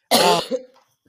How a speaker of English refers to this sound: Y'all, excuse me for all the coughing.